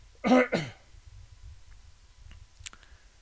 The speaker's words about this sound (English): I want to have another cough, excuse me.